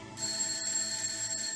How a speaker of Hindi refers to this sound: तभी डोरबेल सुनकर मैं दरवाजा खोलने के लिए आगे बढ़ी, लेकिन दरवाजा खोलना नहीं पड़ा।